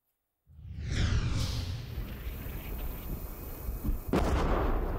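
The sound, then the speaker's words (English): A heavy explosion bursts out of silence with a loud, close blast, followed by a long rumbling roar and a second sharp detonation near the end, with no voices. Explosions on the front line of the war in Ukraine, close to a drone team of the 92nd Assault Brigade. “The explosions are dangerously close as the drone team from the 92nd Assault Brigade set up their bird, attach the bombs, and head off into battle.”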